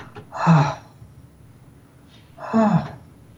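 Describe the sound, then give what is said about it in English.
Two deep, breathy inhalations about two seconds apart, each a broad airy rush, from a person asked to breathe deeper, with quiet pauses between and no talking. “Can you breathe a little deeper,”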